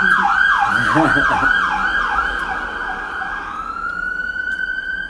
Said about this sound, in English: Well, you know, that is sometimes what happens when you record outside on location. You get a passing ambulance or a police car or whatever that was.